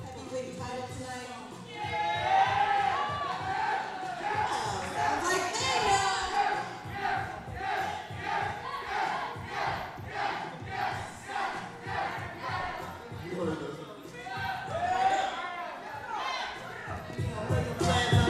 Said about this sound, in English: The crowd responded with a resounding yeah. That says it all.